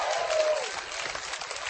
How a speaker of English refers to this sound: If you believe that, give Jesus a shout and a hand clap. Amen.